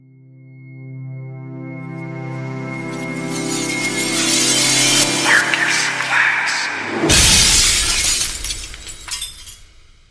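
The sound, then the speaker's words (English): A steady droning tone swells for several seconds, then a loud crash of shattering glass bursts out, followed by scattered tinkling debris. “I think I just stepped on some glass.”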